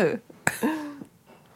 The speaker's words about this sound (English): Did you just fart?